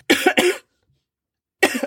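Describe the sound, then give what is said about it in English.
A person imitates a signal cough, like Morse-code coughing from an audience: two quick coughs in a row, then silence for about a second before another short burst of coughing. Fairly loud. “It's always two coughs.”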